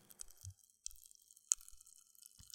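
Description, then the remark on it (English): Faint, irregular crackles and tiny pops of Pop Rocks candy fizzing in a mouth, mixed with soft wet chewing sounds and occasional low thumps, quiet with no talking. “Yeah, Crystal Crunch Rocks are Pop Rocks. In fact, I have some spare ones here. Can you hear that?”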